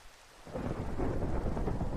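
Steady rain hisses while a deep, rolling rumble of thunder swells after a quieter first half-second and keeps growling low and loud to the end, with no voices.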